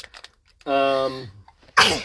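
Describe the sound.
A single loud sneeze: a drawn-out voiced 'ahh' builds up, a short pause, then a sharp, explosive burst of breath. A few faint taps come just before it.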